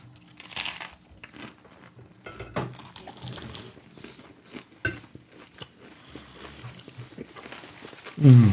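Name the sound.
crunching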